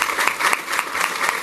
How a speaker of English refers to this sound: So to the Maggiano staff and to the City Cup staff, thank you so much. You can applaud them.